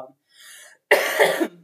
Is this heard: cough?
yes